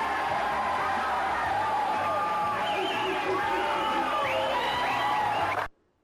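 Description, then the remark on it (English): A packed bar crowd in a film scene erupts in loud, sustained cheering, yelling and whoops as the winner is announced, with Paul Giamatti's yell among them and rising whistles cutting through the dense crowd noise for several seconds before it cuts off abruptly. “And everybody goes crazy.”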